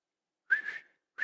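A person with dry lips attempts a whistle, producing a thin, breathy tone mixed with rushing air, followed by a brief pause and a second short, airy try.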